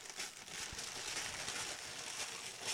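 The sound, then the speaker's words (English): Christmas-themed Pixar wrapping paper crinkles and rustles steadily for a few seconds as a gift is torn open, a dense, papery crackle at fairly low volume with no one talking. “had Christmas Pixar wrapping paper for his items.”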